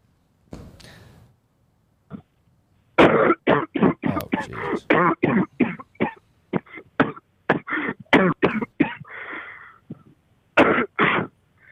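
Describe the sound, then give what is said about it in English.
A man coughs in a long, rapid run of harsh bursts, starting with a throat clear and a short pause, then a dense series of hacking coughs with brief breaks between clusters. “It was a guy coughing.”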